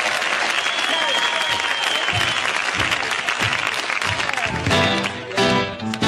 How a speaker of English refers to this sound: And now the pianist is just vamping. Yep. and you hear like minimal applause in the background. Yeah, just like sympathy applause, I guess, or like a smatter of applause.